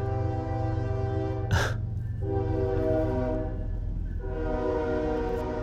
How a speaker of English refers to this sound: Here's a interesting part about living here in Georgia. I'm right next to a train track, and there's the train.